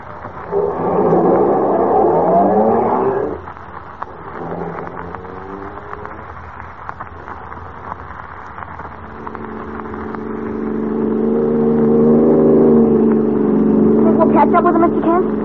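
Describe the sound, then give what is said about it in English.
A car engine revs up in rising bursts, then settles into a loud, steady drone that swells as the car speeds off, with faint voices underneath. “So, they've got a fast car, but we're stepping right along.”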